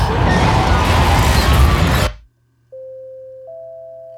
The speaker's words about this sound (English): Hang on, we're still alive. Yeah, I'd noticed that. You have crashed into the fourth moon of Sirius Alpha. Your ship was completely destroyed.